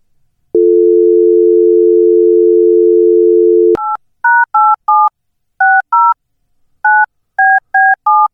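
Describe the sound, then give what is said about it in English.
A steady, humming telephone dial tone holds for about three seconds, then gives way to a quick series of around ten short, bright touch-tone dialing beeps in an uneven rhythm, with no voices, as someone phones the Crow's Nest in Washington, whose line is busy. “So let's call the old Crow's Nest in Washington and find out just what's happening.”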